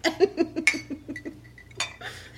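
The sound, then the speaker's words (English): Glasses clink together in a toast, a quick run of bright ringing taps followed by a couple of sharper knocks, with no talking. “Cheers, ladies. Cheers.”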